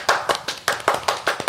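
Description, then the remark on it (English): A quick run of about eight sharp hand claps at a steady, brisk rhythm during a sponsor shout-out for Manscaped, fairly loud and crisp, with no talking underneath. “Can I get a round of applause, everyone?”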